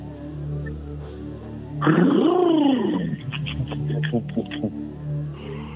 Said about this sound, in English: That's a loud engine, dude. What's going on?